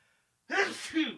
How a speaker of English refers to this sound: God bless you. God, I said God bless you. I know, I had two in me, sorry.